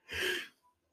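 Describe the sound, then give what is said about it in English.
A single breathy yawn, fairly loud, rising quickly and fading within half a second, followed by a faint exhale and quiet. “Sorry for the yawning.”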